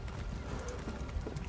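Horse hooves clip-clop in a quick, steady patter against a dense, noisy background, moderately loud, with no one speaking, as the rider gets off the horse.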